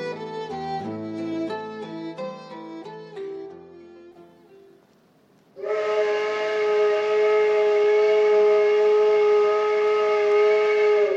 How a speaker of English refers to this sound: Before we leave you, we'd like to blow our own whistle a bit by playing for you some of the music that boat captains and train engineers make when they blow their whistles and toot their horns. The selection comes from the 1972 Vancouver Soundscape